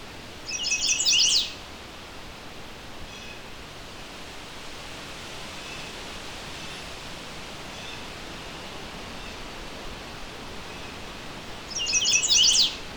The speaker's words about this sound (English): I found in general, chestnut-sided warblers are not as skittish around people. They're a lot like American redstarts in this regard.